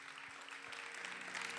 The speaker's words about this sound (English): Come on, let's clap one more time and thank God.